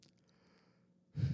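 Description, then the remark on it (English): A person yawns, a short breathy burst that swells suddenly at the end after a stretch of near silence. “As you yawn.”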